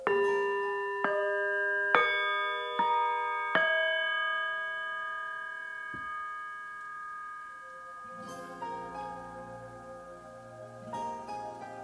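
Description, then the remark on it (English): Tibetan singing bowls are struck several times in quick succession at the start of a meditation, each ringing out with long, shimmering overtones that overlap and slowly fade, followed by softer, wavering resonant tones near the end. “And so I start by ringing the Tibetan bowls.”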